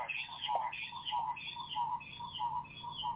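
A loud, continuous electronic squeal of audio feedback warbles in rapid repeating chirps through a sound system, wavering high and mid tones filling the whole moment with no clear speech.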